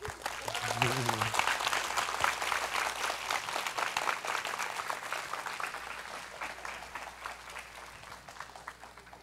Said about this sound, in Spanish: Un fuerte aplauso.